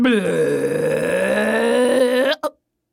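A long, loud, drawn-out burp lasting a couple of seconds, deep and droning, ending with a short clipped puff; it sounds like a voice imitating a belch.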